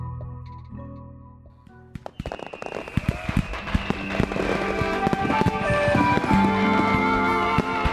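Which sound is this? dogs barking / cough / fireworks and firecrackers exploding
fireworks and firecrackers exploding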